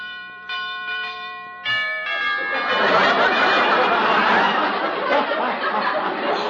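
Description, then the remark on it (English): A doorbell at a house chimes twice in quick succession in the dark, its ringing notes lingering, before a loud wash of crowd laughter swells up and fills the rest of the moment. “Where's the bell? Oh, here it is.”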